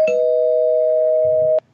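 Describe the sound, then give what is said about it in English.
A single loud electronic bell tone, rung as a spoiler alert, rings out steady, holding one pitch for about a second and a half before cutting off abruptly. No one speaks. “A mild spoiler alert, I'll ring the bell, but you should know this by now if you've gotten up to date.”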